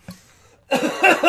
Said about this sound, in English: You coughing all the time is spreading the germs in the air.